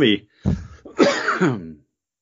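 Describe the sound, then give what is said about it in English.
A loud cough with a throaty clearing quality, broken into a few rough bursts over about two seconds, with no other sound around it. “Didn't mean to cough in everybody's ear there.”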